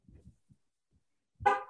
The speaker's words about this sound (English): Sounded like a car honk. Right. Okay there, John? It was my car getting locked.